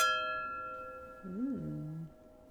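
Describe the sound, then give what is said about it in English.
Wine glasses holding a 2015 Educated Guess Pinot Noir from Sonoma County, California clink once in a toast, a bright strike that leaves several clear, high ringing tones slowly fading, while a person hums a short, rising-and-falling murmur partway through. “So we are drinking the Pinot today. And this is from California, Sonoma County. Yeah, it's 2015. Exact. All right, let's cheers. Cheers.”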